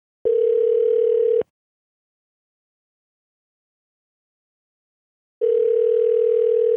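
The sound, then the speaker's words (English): A steady electronic telephone tone hums in two bursts, each about a second long, separated by roughly four seconds of silence, while a call is being placed to a phone number. It is clear and fairly loud, with no voices. “I've got a couple phone numbers here for him.”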